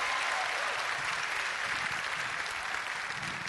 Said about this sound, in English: Would you give the Lord a great big clap offering and shout amen unto him?